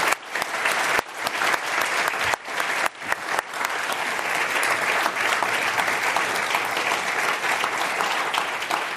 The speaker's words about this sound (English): I just want to join us in giving a big round of applause and appreciation for that one. Thank you.